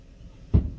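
A single heavy door slam by an angry man, a sharp booming thud with a deep low rumble that dies away quickly, heard alone against quiet background.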